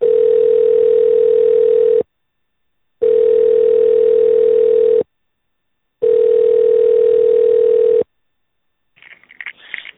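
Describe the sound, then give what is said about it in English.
A telephone tone plays while a call to Du Bois Giant Eagle is transferred to customer service: three steady two-second beeps at one mid pitch, separated by silences, followed by a faint, brief rustling click. “Please hold while I transfer your call to customer service.”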